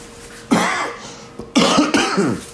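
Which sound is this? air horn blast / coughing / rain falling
coughing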